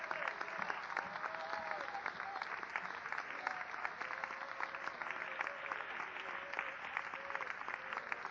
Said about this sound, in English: Oh, let's give the Lord a hand clap tonight.